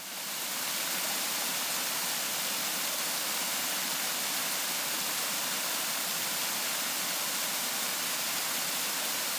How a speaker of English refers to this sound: Tucked away into a little grotto is Hidden Falls. It's surrounded by a rhododendron forest.